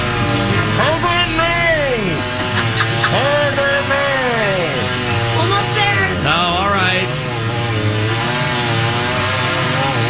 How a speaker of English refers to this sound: Get some more lube. This chainsaw's chafing me. Oh man, I gotta get some more bar and chain oil in there, baby.